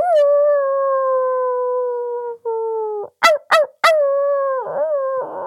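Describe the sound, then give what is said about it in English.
A person imitates a dog howling: a long, sustained, slightly falling howl, then a few short sharp yelps and a wavering, strained howl at the end, loud with no other talk. “I hope if anybody has a dog, they're howling back at me.”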